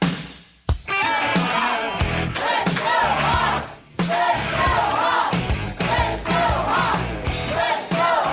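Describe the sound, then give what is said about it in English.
A near-sellout crowd at a live sports radio show broadcast yells and cheers loudly and continuously, a dense wall of overlapping voices with two brief dips before the roar surges back. “Got an almost sellout crowd here tonight, everybody.”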